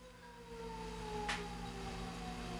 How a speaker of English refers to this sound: It's like when you go online and you see there's the 6 o'clock siren right there. I swear I heard it like a minute ago, too. The air raid siren in Vermilion going off. If you can hear it. Must be six.